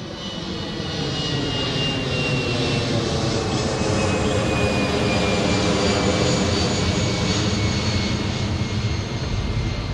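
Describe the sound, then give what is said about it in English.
A jet aircraft roars loudly and steadily as it climbs after takeoff from Changi airport in Singapore, a thick rumble with a high engine whine that slowly drifts downward in pitch. No voices are heard. “Hearing these jets climb to the sky from Changi is the sound of rebound and recovery”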